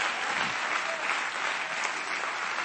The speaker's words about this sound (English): Come on, clap your hands to the Lord right now and give Him some praise.